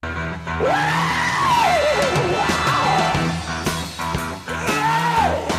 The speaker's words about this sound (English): wasted no time quickly grabbing the microphone and letting out a blood-curdling scream at the band as the band jumped right into the opener,